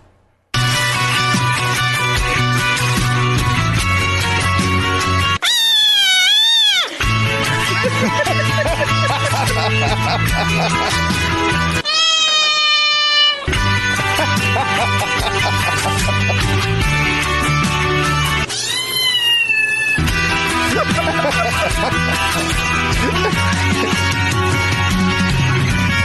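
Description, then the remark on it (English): A loud, upbeat song where the band drops out three times for short bursts of cat meows, sliding high and wavering, before the full music crashes back in. “Those cats are shredding it.”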